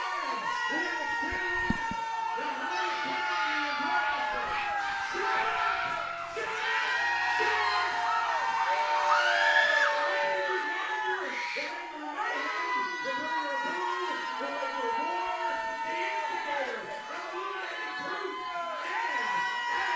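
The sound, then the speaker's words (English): A large crowd at a wrestling event roars and cheers continuously and loudly during a wrestler's entrance, with whoops and high-pitched shouts rising out of the dense wall of voices throughout. “Crowd is so loud, I didn't get to hear him say what his name actually was.”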